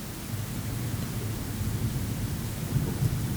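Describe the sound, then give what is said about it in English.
A low, sustained rumble of thunder following lightning rolls on beneath a steady hiss like rain, as snowfall intensifies under a purple sky, swelling slightly toward the end, with no voices present. “The snowfall intensifies, the sky turns purple, lightning thunder follows on its heels.”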